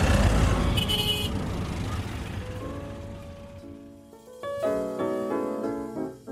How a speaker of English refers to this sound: For me, I think I can understand human nature and my place in the universe a little bit better in the hecticness of all this traffic than I could by sitting still for 10 hours.